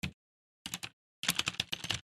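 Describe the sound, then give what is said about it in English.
Crisp, loud keystrokes on a clicky mechanical keyboard with built-in LEDs under each key: a single clack, a short burst of three, then a fast run of rapid clicks, with silent gaps between. “she got me this clicky clack keyboard. So check this out. I want you to listen to this.”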